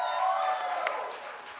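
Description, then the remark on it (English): A live audience at Twain's Tavern in Pasadena cheers and applauds for Tyus Bowser at the live Tyus Bowser show. A steady wash of clapping and shouts has a few whoops rising above it and fades slightly toward the end. “Make some noise for Tyus Bowser, folks.”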